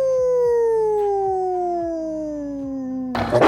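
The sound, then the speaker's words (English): A single long wolf howl, loud, sliding slowly downward in pitch for about three seconds before cutting off into a brief burst of rough noise. “The Wolf. Ow, ow, ow!”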